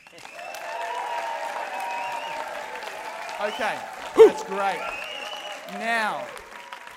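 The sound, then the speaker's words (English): A group gives a round of applause mixed with sustained voices cheering together at a Power of Purpose event, lasting several seconds, followed by a person speaking briefly over the fading crowd. “Do you remember how we give someone an applause?”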